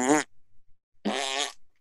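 Two loud, buzzy fart noises, a short one and then a longer one after a brief pause, apparently made with the mouth as a raspberry-style imitation, with no talking.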